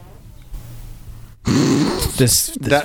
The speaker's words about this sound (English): Keeps farting. Now you got to hear it. Look at that. I think that came out in here. I think you could hear it. I think I heard it in the headphones. God, I hope so.